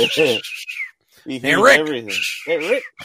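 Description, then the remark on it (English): Loud birds chirping and squawking right up close, picked up by a Bluetooth microphone: three harsh, raspy bursts of calls in quick succession with short gaps between them, and no one talking. “I'm like, the birds sound like they're right in the fucking microphone.”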